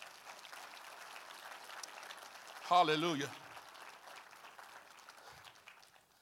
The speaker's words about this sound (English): Somebody need to give him a hand clap of praise for that.